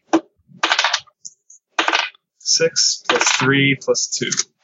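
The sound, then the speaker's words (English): A quick clatter of dice tumbling and clicking across a table, a few rattling bursts, with a brief voice-like sound partway through. “Give me a deceit roll.”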